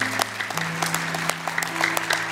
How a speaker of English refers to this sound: I just want to thank everyone who gave their time, their money, and all their effort to make all of this happen. Just a round of applause for them.